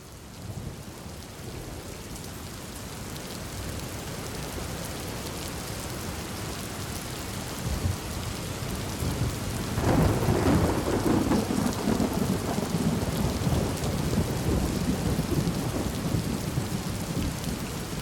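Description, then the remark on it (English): Steady, heavy rain hisses throughout, then a deep roll of thunder rumbles in about halfway and lingers beneath the downpour. No one speaks. “Lightning can be a destructive energy.”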